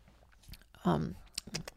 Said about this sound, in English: Is this ASMR or just annoying me crunching?